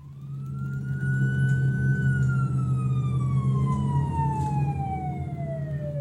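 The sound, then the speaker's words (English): An emergency vehicle siren, from an ambulance and fire truck arriving at a car crash, wails loudly, rising briefly then sliding slowly downward in one long sweep over a heavy, steady engine rumble, with no voices. “Within another few minutes, ambulance and fire truck arrived from the north, obstructed by the wires and unable to get any closer”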